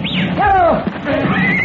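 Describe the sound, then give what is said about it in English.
A horse neighs, a loud quavering whinny that rises and falls, preceded by a short high chirp and followed by a softer second call. “We can call our horses.”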